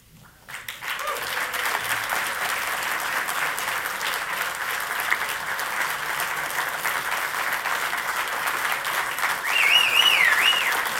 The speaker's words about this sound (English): Yes, and that is the applause that you hear for Megan Davis reading the Uluru Statement from the Heart.